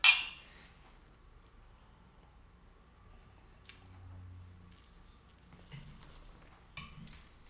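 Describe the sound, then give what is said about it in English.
A single bright, sharp clink of glasses of a 90-proof spirit touching in a toast at the very start, followed by a quiet stretch with faint sipping and small handling sounds as it is tasted. No one speaks. “Let's give it a taste. Cheers, sir.”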